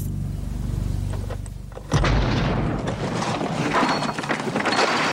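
A low engine hum runs for about two seconds, then a car bomb, unsophisticated but extremely powerful and planted directly under the driver's seat of a car, explodes with a sudden loud blast, followed by a sustained roaring, crackling rumble of debris.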